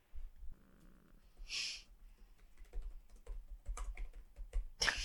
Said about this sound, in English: The most intense typing.